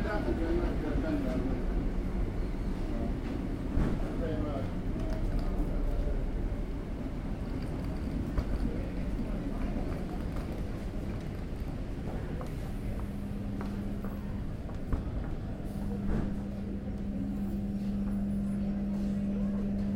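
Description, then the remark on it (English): Busy railway platform ambience at Peterborough Station on 24 July 2008, with a steady low rumble of a train, a constant background murmur, and a sustained engine hum emerging toward the end. “Peterborough Station - 24th July 2008”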